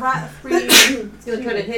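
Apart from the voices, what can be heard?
sneeze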